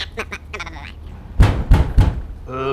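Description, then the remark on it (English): Three heavy knocks on a door in quick succession, following some brief high-pitched voices, with a voice starting to speak just after the last knock. “Do you think this is their door? Well, it's a door.”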